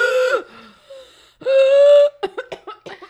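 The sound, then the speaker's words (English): A voice imitates heavy, gasping breathing after climbing up to a peak on a hike: two long, strained drawn-in gasps followed by a quick run of short panting huffs, loud with no other talk. “And by the time I get up there, I'm heaving. I'm gasping for air.”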